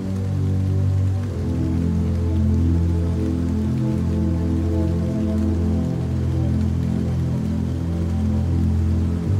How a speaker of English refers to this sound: The rains, it's raining in the barrio.